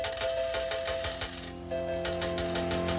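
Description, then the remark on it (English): Bright, jingling slot-machine-style chimes in a song intro, with quick metallic coin-like clinks repeating in a steady rhythm over sustained electronic tones, briefly thinning out midway before picking back up. “I love how the intro is like the slot machine sounds.”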